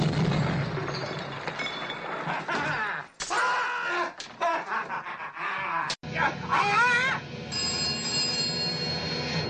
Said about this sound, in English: Inspector Clouseau's residence. The phone is ringing.